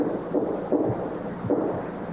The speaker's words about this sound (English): And if we play the original audio, you'll hear it right at the beginning. Mm. It's these distinct sort of taps on wood, this sort of knock-knock sound.